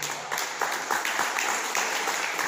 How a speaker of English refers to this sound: People clapping for me, I appreciate it.